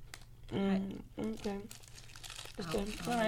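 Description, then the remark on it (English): Crunchy snacks being chewed, with a steady stream of crackly, crinkling noise running through the whole clip while voiced sounds rise over it in short bursts. “Sorry, you guys, I know listening y'all hearing mad snap, crackle, and popping.”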